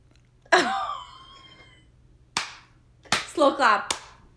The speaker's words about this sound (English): Slow clap.